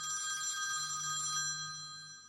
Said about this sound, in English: Only to be startled by the phone ringing at the very same moment. It was like I was in this weird trance and the ring snapped me out of it.